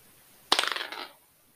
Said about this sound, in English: Go ahead and roll your d20, your big dice. This one? Hey, he has a red dice. You're going to have to roll pretty good to just hit something without seeing in there.